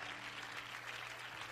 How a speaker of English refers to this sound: And would you clap your hands and give praise to the Lord with your voice?